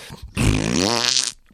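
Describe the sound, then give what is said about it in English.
A single loud, drawn-out fart noise lasting about a second, made by a reverend in the next booth, buzzy and raspy with a slightly rising pitch, heard on its own with no talking. “He says, what are the fart noises?”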